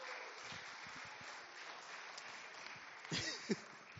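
A crowd applauds steadily, a dense wash of overlapping claps holding at an even level throughout, with a brief burst of voices cheering near the end.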